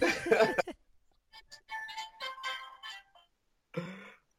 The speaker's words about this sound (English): My notification tone on my phone for like texts and things is the chime